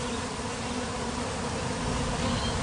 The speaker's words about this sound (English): out to see a few hundred thousand bees, nearly 500,000 to be precise. That's a lot of bees.